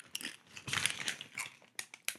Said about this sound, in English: The only thing I will say about taro chips is that you have to be really careful how you crunch them because they will break into small little bits and stab you in your gums.